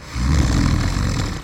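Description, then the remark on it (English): A single loud, rumbling snore from a grandmother drags on for over a second, a deep raspy rattle with no talking around it. “Yeah, plus grandma is snoring.”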